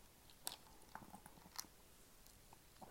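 Someone sips a drink, with a few sharp, wet mouth clicks and faint slurping sounds spaced over a few seconds against quiet room tone.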